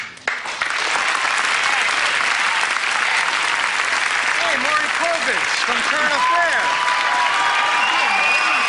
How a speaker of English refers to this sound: This is a fucking applause for Maury Povich. That's wild. More people know about him than Ed O'Neill.